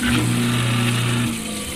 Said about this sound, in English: She ran water. For a hot second, she ran the disposal.